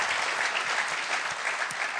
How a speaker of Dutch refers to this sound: Actually, no, give your pastors another round of applause. Geef, I know pastors nog een applaus.